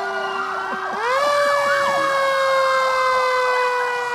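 A fire truck siren blares: a loud, steady horn-like tone that steps up in pitch after about a second, with a wavering wail layered over it throughout. No one speaks.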